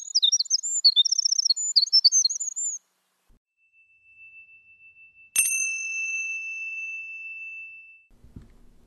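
A quick burst of high, twittering bird chirps lasts a few seconds, followed after a pause by a single bright bell-like ding that rings out and slowly fades.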